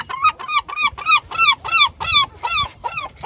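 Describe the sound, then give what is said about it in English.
A seagull calls out in a rapid series of about ten loud, nasal, yelping cries, evenly spaced, with no talking over them. “Oh, even the sound of them is quite annoying, isn't it? So, where do you stand on seagulls?”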